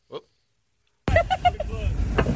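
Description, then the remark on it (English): After a brief sound and a moment of silence, a car engine suddenly roars loud as the driver hits the gas while towing a man on an inflatable unicorn sled into a mailbox, with excited voices shouting over the revving. “Yeah, they got the inflatable unicorn, which is usually in the pool, but he gooses it on the gas of the car and plows dad into the mailbox.”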